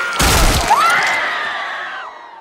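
A loud crunching crack, like a skull being crushed, gives way to a high, drawn-out scream that holds for over a second before cutting off.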